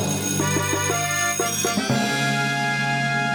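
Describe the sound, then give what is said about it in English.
A bell, rung as a sympathy bell for winning the Marvel Bet of the Week, rings out several times in quick succession, its bright metallic tones layering and sustaining into a steady shimmering ring that holds to the end, with no voices. “It's a sympathy bell, but it also is deserved because you did come out on the winning side of our Marvel Bet of the Week.”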